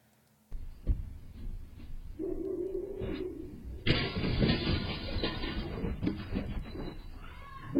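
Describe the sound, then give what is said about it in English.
A dog snarls and yelps, then a sudden loud crash of breaking glass bursts out midway as the dog jumps out through a glass door, followed by clattering, scrambling noise and more barking. “This bitch jumped out the door. Bro, through the glass.”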